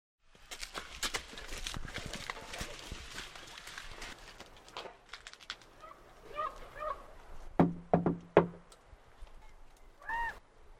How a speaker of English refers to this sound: One more knock.